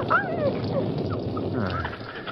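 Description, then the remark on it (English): A collie puppy whimpers in a few thin, rising and falling whines over a steady background hiss, with no talking. “A masked outlaw carrying a collie pup.”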